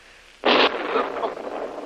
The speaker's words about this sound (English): What was that? That was a heavy explosion. Not far away.